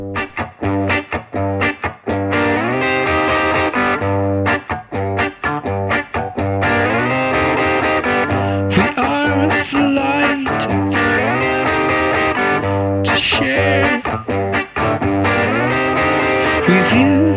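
A loud, busy indie rock track with distorted, effects-laden guitars, steady bass and drums, shifting through choppy stop-start passages into denser, swirling sections with no voices speaking.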